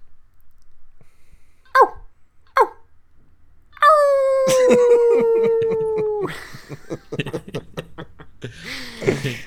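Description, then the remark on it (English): A person imitates a coyote by mouth as a locator call: two short yips, then a long wavering howl that slides downward, followed by a burst of choppy yipping. Fairly loud. “Normally I just coyote call with my mouth.”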